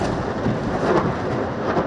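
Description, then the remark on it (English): A continuous, heavy low rumble of explosions and detonations over and in the Gaza Strip, heard in the evening from Israel near the Gaza border, rolls on without a break, a thunder-like roar with no sharp individual blasts standing out and no voices. “We are seeing an intensification of explosions over and in the Gaza Strip, more than we've seen in recent days.”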